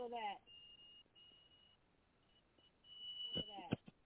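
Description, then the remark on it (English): A thin, steady high-pitched ringing tone from new headphones, seemingly only from the left earpiece, comes and goes in two stretches, fairly faint, with brief bits of voice at the start and end. “It's just I'm testing out these new headphones, and I heard like a ringing sound again in my ear.”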